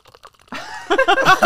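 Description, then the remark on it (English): A few faint clicks, then about 4 ounces of Pepsi is poured hard into a glass: a sudden, loud, rushing splash that turns to gurgling, fizzy bursts for about a second. No voices. “I'm going to pour it. Hard pour, right?”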